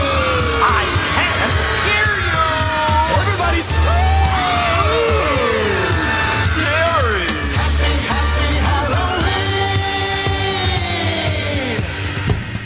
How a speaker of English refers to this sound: You're all invited to scream like you're trying to wake the dead.